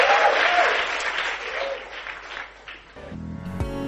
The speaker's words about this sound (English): Give the Lord a clap offering and you may be seated.